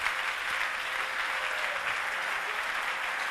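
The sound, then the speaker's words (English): An audience claps in a steady, unbroken patter for about three seconds, a dense wash of many hands at an even, fairly subdued level, with no voices over it. “Oh, what a weak clapping.”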